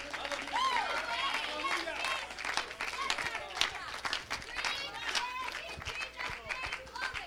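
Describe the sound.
A church audience claps hands in praise, steadily and loudly for several seconds, dense overlapping claps mixed with voices calling out and cheering throughout.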